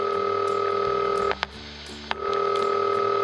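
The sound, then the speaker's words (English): A telephone number being dialed: sustained electronic touch-tone beeps broken by a sharp click and a short low-pitched gap, then another click and the steady tone again. No one speaks. “You know, maybe I should really get a more modern phone.”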